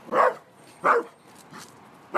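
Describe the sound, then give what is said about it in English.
A dog named Comet barks in short, sharp bursts: two loud barks about half a second apart, then a softer one and the start of another, with no talking. “Different dog.”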